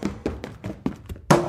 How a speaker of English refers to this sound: you've knocked the cane out of my hand.